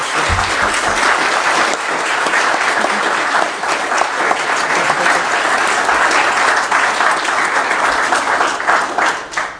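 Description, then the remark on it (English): A crowd applauds steadily for nearly ten seconds, a dense, loud wash of many hands clapping at once with no pauses and no voices standing out. “If your heart is as full as mine, why don't we just clap applause for both of you.”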